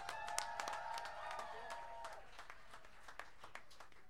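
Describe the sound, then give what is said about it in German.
An audience at a band's live concert applauds with a dense patter of claps, while a sustained musical tone rings underneath for the first couple of seconds before fading, leaving scattered claps. “Mal einen Applaus für euch selber hier.”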